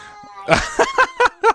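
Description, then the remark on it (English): A voice imitates a cat, starting with one drawn-out meow and then four short, evenly spaced meows in quick succession, clear, with no other talk. “That was a good meow.”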